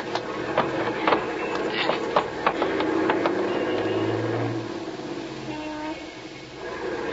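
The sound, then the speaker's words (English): A truck pulls off through traffic as the traffic light changes, with people grabbing onto it to hitch a ride. Its engine rumbles low beneath a run of sharp mechanical clicks and rattles, with the steady roar easing slightly toward the end. No one speaks. “That truck there looks okay. Yeah, we're just gonna grab onto it.”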